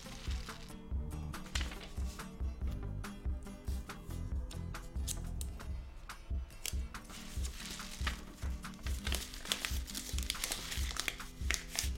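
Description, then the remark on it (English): Busy paper crinkling with crackly rustles and short ripping bursts as tape is pulled and pressed to secure a piece of paper over the bottom end of a tube while making a homemade rain stick, continuing steadily over a soft musical background. “I'm gonna take a piece of paper and cover one side. And then I'm gonna take a piece of tape”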